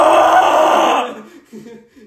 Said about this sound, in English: Just scream at the phone. Scream about how mad you are that we haven't gotten God of War trailer yet.